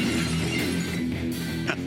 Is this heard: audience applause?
no